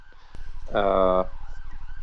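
ambulance siren passing nearby

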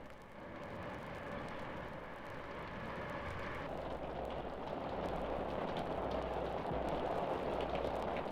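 rain

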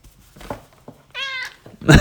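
domestic cat meowing

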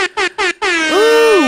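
air horn sound effect

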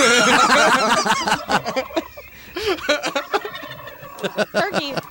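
turkey gobbling

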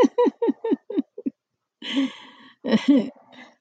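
dog snoring

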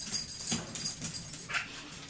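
dog whining

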